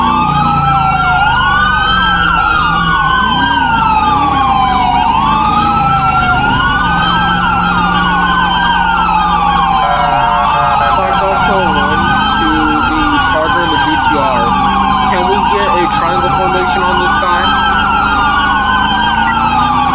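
An ambulance siren wails loudly and continuously, its tone sweeping up and falling back in a steady cycle every couple of seconds, with other siren tones and a low rumble layered underneath, during a stolen ambulance pursuit in the FivePD game (TSDOJ).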